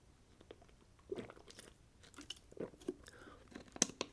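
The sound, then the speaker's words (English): Quiet mouth sounds: a few soft slurps and wet swallows as someone takes a sip of water, with small clicks scattered irregularly over a few seconds and no talking. “Okay, take another sip of water, and then we'll talk about this second buy-in.”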